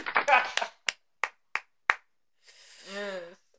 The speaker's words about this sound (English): Okay. Well, all right. Another applause. You clap if you think you should suffer.